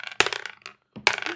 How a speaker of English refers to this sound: All right, guys, let's grab our dice and roll initiative one more time.